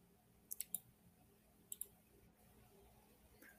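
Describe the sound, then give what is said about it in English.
Quick, crisp mouse clicks closing open links on a computer: a fast burst of three, then a pair a second later, and one faint click near the end. “I'm clicking out of some of my links here because I have too many links open.”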